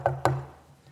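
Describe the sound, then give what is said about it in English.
Two quick knocks on a door, moderately loud, each with a hollow, woody thud, followed by a short quiet stretch with no voices. “Did I just hear somebody knocking at the door?”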